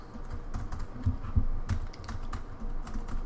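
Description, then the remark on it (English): Alt keys on a dead laptop showing a blue screen being pressed in a quick, irregular series of soft clicks and taps, with a low background hum and no talking. “How about the alt keys? No.”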